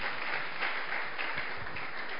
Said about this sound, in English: Clap your hands and do it then.